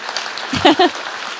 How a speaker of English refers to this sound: So would you guys just give them a massive round of applause? Yeah, let's do that, honestly.